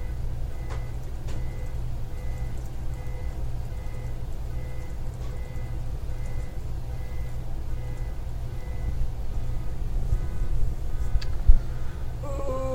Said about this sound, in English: You don't hear car alarms very often anymore. That's the thing, is like they become so ubiquitous that mm-hmm. when you do hear them, nobody gives a shit.